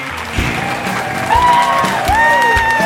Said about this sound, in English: Oh my God, the crowd is going wild.